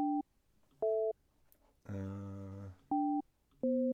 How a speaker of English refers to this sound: Is that a toy phone? It's Skype.